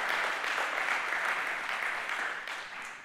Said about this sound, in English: He's a God of more than enough, abundant, beyond what we could ever imagine and think. Give him a hand clap today because that's who he is.